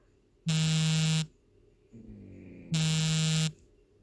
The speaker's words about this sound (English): That was just my friend ringing me. Not really too sure if I can quite do with taking another phone call right now.